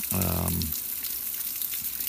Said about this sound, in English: If you listen in the background, you can hear the rain, which has been coming down pretty much all day.